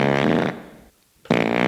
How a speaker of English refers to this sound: Oh, I found the fart, by the way. I think it's right over. There we go. Speaking of butt themes. It's got like, it goes up like three octaves.